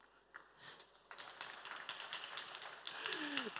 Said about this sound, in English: Can't you see that those claps are feminine claps? They don't have bars in the clap. Only the women are clapping.